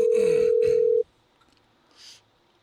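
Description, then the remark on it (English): A loud, steady telephone dial tone hums for about a second as a call is placed to a Whole Foods store, then cuts off, leaving a quiet line with a faint soft rustle shortly after. No one speaks. “I'm calling a Whole Foods.”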